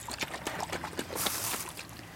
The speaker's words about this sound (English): A bit of syrup all over the top. So you always add a bit of orange blossom at the end. Just adds like a really beautiful fragrance. Good dousing all over. You're shaking it a bit? Yeah.